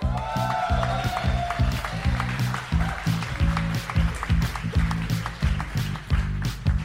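An audience applauds steadily for several seconds for comedian Sun Tran coming up to do an uninterrupted 60 seconds, a dense wash of clapping over a repeating low, pulsing beat of walk-on music, with no one speaking.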